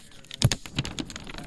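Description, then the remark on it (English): A hand- or screen-printed paper poster is handled, giving a quick run of crisp, crackling rustles with a couple of sharper snaps, fairly quiet and with no voices. “It's a piece of paper.”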